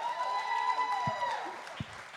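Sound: audience applause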